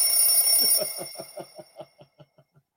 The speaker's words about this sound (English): Perhaps maybe the Arts of Astrology saying that cool alarm. You like that alarm? There we go.